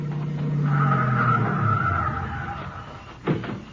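A couple of cars pull up with a long, loud squeal of skidding tires under engine rumble, ending in a short thump as they stop.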